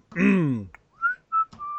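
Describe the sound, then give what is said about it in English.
A person mimics a union break whistle: a loud, descending buzzy blast followed by three short, clear whistled notes, with no talking. “Get a break whistle. Union break.”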